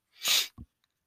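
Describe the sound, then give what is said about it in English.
A single forceful, hissing sneeze bursts out, followed right away by a brief, lower-pitched sniffle, then silence. No one speaks. “Sniffle.”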